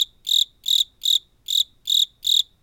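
Crickets chirp in a steady, even rhythm, about six bright, trilling pulses evenly spaced, fairly loud, with no voices and only a faint low hum underneath.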